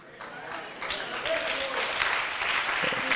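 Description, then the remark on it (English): An audience at a church breaks into steady applause, a dense, continuous wash of many hands clapping that holds at an even level for a few seconds, with faint voices mixed underneath. “Well, some of you were wanting to clap your hands, but well, praise the Lord.”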